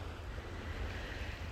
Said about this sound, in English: The waves are rolling in slowly, and the birds awake prior to all the humans.